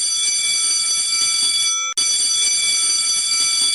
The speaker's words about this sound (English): Oh, boy. Thank God we got the right bell in here.